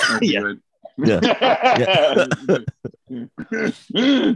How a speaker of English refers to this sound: Yep, hilarious. All three of us coughing as we laugh. I was like, I know the sound of my people.